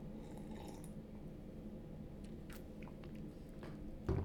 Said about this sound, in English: Let the coffee kick in. Hold on. Let's take another sip.